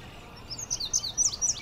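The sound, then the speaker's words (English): An indigo bunting sings up in a maple tree by a marsh path, a run of quick, high, thin notes in paired bursts, moderately loud over a faint outdoor hiss with no voices. “That high-pitched sound, and every note is repeated. Every phrase is repeated.”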